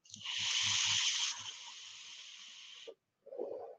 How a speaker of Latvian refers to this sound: Gaisa padevis viņiem abiem diviem ir vienādas. Šeit mazliet klusāka tā, tas šņākoņi, ja, ka vēl mazliet klusāk. Šeit tomēr mazliet vairāk svilpo.